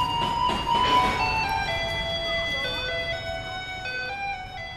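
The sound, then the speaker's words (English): A garbage truck in Taiwan plays a bright, electronic chiming melody through a loudspeaker, the tune ringing steadily over a low engine rumble and street noise, loud throughout. “you hear a truck rumbling down the street playing Für Elise”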